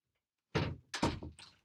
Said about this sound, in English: The first clunk clunk. Yeah, the clunk clunk was my door, was the hinge just realigning so the door will shut.